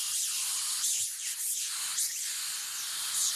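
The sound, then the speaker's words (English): A loud, sustained hissing spray blasts continuously for a few seconds, bright, with slight surges in intensity, sprayed at a man flying a homemade helicopter. “The spray was a direct hit, and its blast knocked Tutter from the cockpit.”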